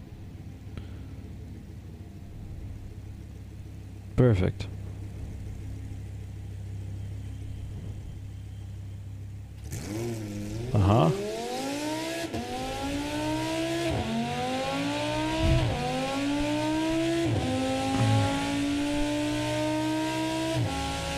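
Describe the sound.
A low engine rumble idles before a Highlander's engine fires up loudly and revs repeatedly, its pitch climbing in rising sweeps, sustained, with a brief spoken remark early on.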